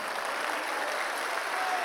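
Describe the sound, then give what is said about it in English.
An audience claps steadily for God during a sermon in Arizona, many hands blending into a dense, continuous wash of applause that holds at an even loudness throughout, with no voices standing out. “If you believe it, give him a 10-second hand clap in this place.”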